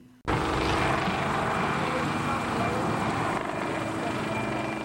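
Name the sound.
helicopter flying overhead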